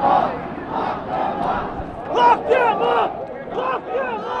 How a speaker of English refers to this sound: The crowd clearly at that point was energized and they would cheer everything he said.